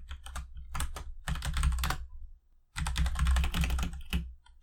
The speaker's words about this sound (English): Let me go look up on my clicky clicky keyboard.